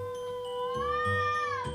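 A single long, drawn-out cat meow, rising and then falling in pitch with a whiny, wavering tone, with no talking.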